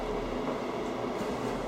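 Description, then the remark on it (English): A kettle boiling, a steady rushing roar with a low rumble underneath, holding at a constant level throughout without any voices. “Oh, kettle's boiled.”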